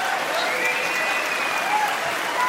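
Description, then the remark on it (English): Steady audience applause for the federal government as first contestant on a mock game show, a dense, even wash of clapping hands that holds a constant loudness throughout. “Let's give a round of applause to the federal government.”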